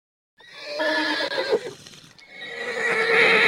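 A horse neighs loudly, a long quavering whinny that dips briefly in the middle before rising again into a strong, wavering cry.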